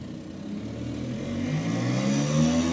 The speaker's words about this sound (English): Oh, wait, no, that's a Vespa. With a giant fucking pipe on it.